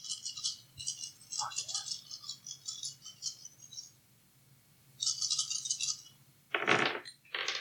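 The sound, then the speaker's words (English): Dice rattle in a cupped hand in two long shaking bursts during a role-playing game, followed by a couple of sharper clattering knocks as they're tossed and land. “So you get two more dice.”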